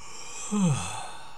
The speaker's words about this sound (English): Just like if you were to let out a big yawn.